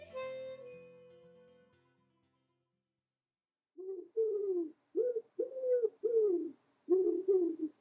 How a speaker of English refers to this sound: The pigeon. She didn't know the nuisance she'd created when she laid out neatly the floor plan of her nest on the rooftop along the soffit.